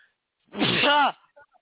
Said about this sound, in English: I got to sneeze.